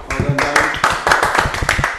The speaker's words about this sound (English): I think round of applause for Dan